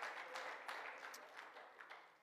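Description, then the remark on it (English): A crowd claps together in a steady, dense patter of applause that stays fairly soft, with a few sharper individual claps standing out above the wash, after the speaker asks those who believe to clap their hands and praise. “If you believe that tonight, clap your hands and praise it.”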